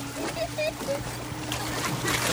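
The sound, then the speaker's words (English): Continuous watery splashing and churning of a woman swimming in a pool, with a steady low hum underneath and a few faint high chirps scattered through it. “She's swimming, you bozo.”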